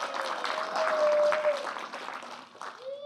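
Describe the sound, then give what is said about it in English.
An audience breaks into a steady round of applause, dense clapping filling the whole stretch, with a couple of brief whoops or cheers rising over it. “So a round of applause for We Bear Bears.”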